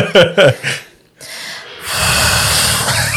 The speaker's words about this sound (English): Okay, who was just breathing into the mic?